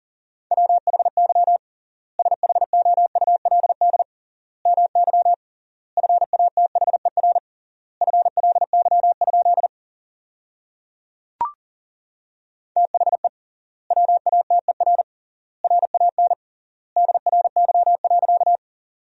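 Rapid Morse code at 40 words per minute with triple word spacing, sending sentences made from the 500 most common words: beeps at a single steady mid-high pitch in quick bursts of dots and dashes separated by short silent gaps, with one brief click partway through.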